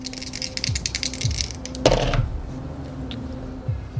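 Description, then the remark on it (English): Two dice rattle in a hand for a couple of seconds, then clatter sharply onto a hard surface and skitter briefly to a stop as they are rolled for damage, fairly loud with a low hum underneath. “You swing the fist, and go ahead and just roll your two dice of damage.”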